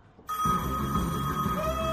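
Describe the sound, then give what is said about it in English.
A phone rings on an outgoing call to an AT&T cell phone, a steady buzzing ring tone that starts abruptly after a brief quiet moment and continues unbroken at a moderate level, with no voices. “I'd like my one phone call.”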